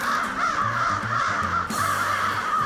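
Several crows caw loudly and continuously, their harsh calls overlapping into a dense, raucous chorus with no pauses and no talking.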